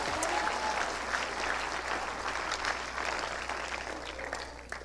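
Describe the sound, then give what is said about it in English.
A crowd claps together in sustained, dense applause in answer to a call to clap hands, steady and fairly loud for several seconds, with no talking over it, tapering slightly toward the end. “Clap your hands if you are reset.”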